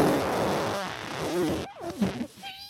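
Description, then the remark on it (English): A long, loud, raspy fart sputters for over a second, then breaks off into a few shorter squeaky, wavering toots that trail away at the end, with no one talking. “He's quite a talented farter, too.”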